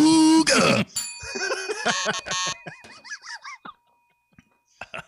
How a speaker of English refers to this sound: This is what I was afraid of when I handed you the buzzer last week.